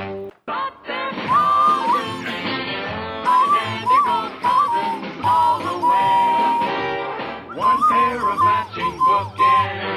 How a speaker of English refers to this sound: do this, the death whistle to send their spirits off.